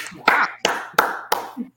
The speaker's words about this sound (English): So please, please clap it up for Monica McNutt. Let's go. Let's go. Let's go.